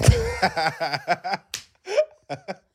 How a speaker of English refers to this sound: Leg slap. Slap your own leg.